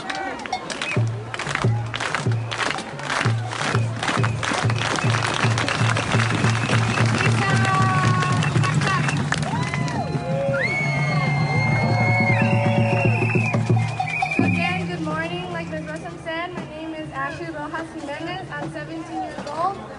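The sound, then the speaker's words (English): A crowd at the Magnet Academy at Roosevelt High School in Boyle Heights, on a chilly, rainy morning, claps in unison: sharp sparse beats that speed up into rapid clapping, then dissolve into loud cheering, whoops and excited crowd chatter. “It's a clap that starts off slowly and progressively gets faster.”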